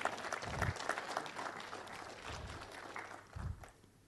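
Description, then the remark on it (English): An audience claps together as a clap offering to God, in a dense, steady wash of applause that gradually thins and fades toward the end, with a few low thumps scattered through it. “Let's give God a clap offering here.”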